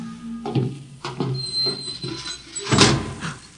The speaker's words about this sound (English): Open the door, Bobo. Inside.